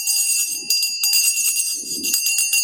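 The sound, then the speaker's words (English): A bright bell rung to greet a first-time caller rings with sustained, shimmering high tones, struck more than once in quick succession, loud with a lingering metallic ring. “First-time caller. Oh, wait, you get the bell.”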